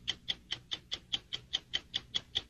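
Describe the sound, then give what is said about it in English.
A clock ticks steadily and quickly, about a dozen crisp, evenly spaced ticks with nothing else around them. It sounds fairly quiet. “That sound, my friends, is the clock ticking on the Ohio House of Representatives.”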